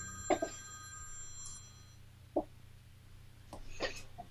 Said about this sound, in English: I got a phone call.